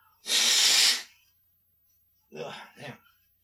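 A loud, hissy blast of nose blowing lasting under a second, followed after a pause by two short, rougher bursts of breathy sound.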